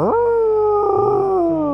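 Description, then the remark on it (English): A person imitates the howl of the Ozark Howler with a single sustained, wavering voiced note that rises quickly, holds steady, then slowly falls, loud with no other sounds. “You did a howl.”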